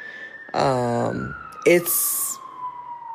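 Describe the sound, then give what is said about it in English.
An emergency siren going off outside on a street in East Oakland holds a steady, slowly falling wail throughout, with a brief voice and a short burst of hissy noise passing over it. “I know the sirens are going off right now, but like generally it's like a lot more quiet here on the street right here where I live.”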